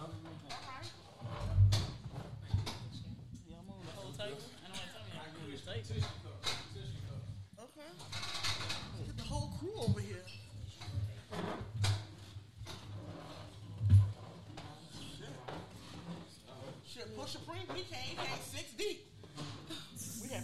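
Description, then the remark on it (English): Red stools and chairs scrape and slide across a hard floor in several short bursts as they are pulled up, mixed with voices chatting and occasional chuckles. “Maybe I'll slide a chair around or something.”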